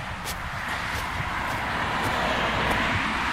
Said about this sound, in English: And there is a group of cars passing by, and then another one from the right. I'll just wait here.